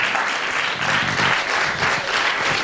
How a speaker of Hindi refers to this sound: ताली बजा सकते हो